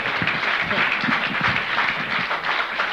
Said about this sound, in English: Give him a good clap. Bless you.